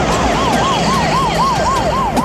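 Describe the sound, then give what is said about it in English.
A loud ambulance siren warbles rapidly up and down in a steady, fast cycle as the ambulance races past on a city street, over a low rumble of street traffic, with no voices. “On a city street, we see an ambulance race past”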